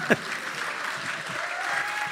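An audience breaks into steady applause for the news that the Democrats have won the House, a dense wash of clapping that holds at an even level for a couple of seconds after a brief sharp onset.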